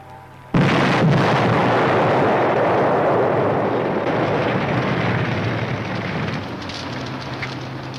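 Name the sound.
car exploding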